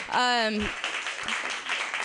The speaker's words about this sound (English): Let's get a round of applause for my boobs right now.